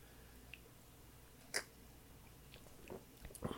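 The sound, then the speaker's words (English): Quiet mouth sounds of someone taking first sips of a cocktail: one sharp wet sip near the middle, then a few softer slurps and lip smacks toward the end, with no talking. “First sips.”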